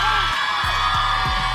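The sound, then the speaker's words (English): A loud, steady roar of a crowd cheering and whooping at the Elvis Duran and the Morning Show Beach Bash at Jenkinson's in Point Pleasant, an outdoor beach event in the morning, a dense wash of voices with a few low thumps underneath throughout the short clip. “So we have a crowd here.”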